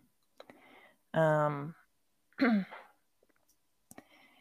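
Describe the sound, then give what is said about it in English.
Two loud, harsh, voiced coughing bursts as iced coffee goes down, the first longer and more tonal, the second shorter and rougher, separated by a pause with faint clicks and breathy sounds around them. “Was that your spicy cough?”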